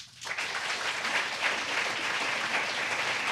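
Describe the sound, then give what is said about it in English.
An audience claps steadily as a vote in a poll by applause, a dense wash of hand claps that rises quickly and stays loud and even throughout, with no voices standing out. “But before we get to that, I thought we'd just do one final poll by applause.”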